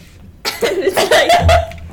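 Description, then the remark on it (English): A person mimics coughing with their voice: a quick cluster of harsh, raspy bursts, loud, running for just over a second before trailing off. “Some famous guy and some girl whose mom is sick with, I don't even know what, she's just coughing.”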